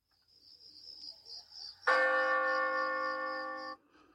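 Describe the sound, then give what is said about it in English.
A single deep, hollow clock bell strikes the hour once, loud, its rich tone ringing for nearly two seconds before cutting off, over a faint steady high-pitched chirring in the background. “He spoke before the hour bell sounded, which now it did with a deep, dull, hollow, and melancholy one.”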